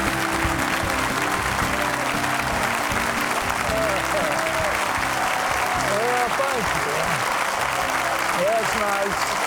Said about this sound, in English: I know why everybody's applauding.